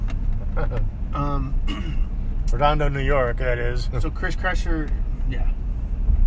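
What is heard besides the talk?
truck driving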